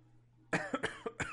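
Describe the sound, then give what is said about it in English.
After a moment of near silence, someone breaks into a quick fit of about five sharp coughs in rapid succession, fairly loud, with no talking. “I just heard …'s cough and it kind of threw me off for a second”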